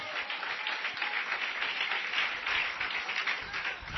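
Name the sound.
audience applauding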